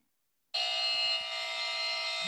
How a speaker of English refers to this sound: I'm going to test out my buzzer sound, make sure it's ready. Maybe. Oh, it's on Bluetooth. So that means there's a big buzzer sound happening in my speaker right now. That's awesome.